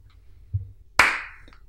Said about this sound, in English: Oh, I forgot to clap when this started.